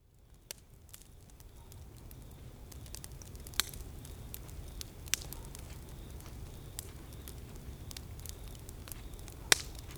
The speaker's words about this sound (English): Crackling just, fireplaces. Like, lead it off into crackling fireplace sounds right there. Take a moment. Be by the fire.